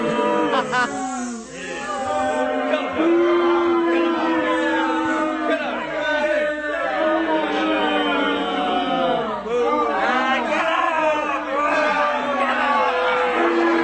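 A large crowd boos loudly and steadily, many overlapping drawn-out low "ooo" voices swelling and dipping for about fourteen seconds without a break.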